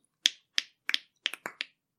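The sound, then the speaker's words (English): About eight sharp finger clicks or snaps in an uneven rhythm, some coming in quick pairs, each a crisp bright crack that dies off quickly, with silence between and no talking. “No, that's clicking.”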